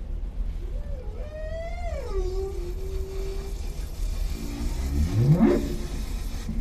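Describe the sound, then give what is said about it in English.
A humpback whale moans in long, gliding tones, first a wavering rising-and-falling cry, then a sharp upward sweep, over a steady low underwater rumble. “Humpback whale vocalizations can be heard across entire oceans.”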